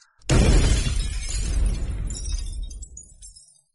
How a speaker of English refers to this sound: The door next to that disintegrates, windows break.